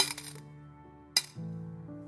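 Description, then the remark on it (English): Small coins are dropped as an offering and clink, a quick jingle at first, then a second bright clink about a second later, each leaving a short metallic ring. No one speaks. “I mean, they were the small ones that didn't even make noise, not even the big coins that would have rattled a little more.”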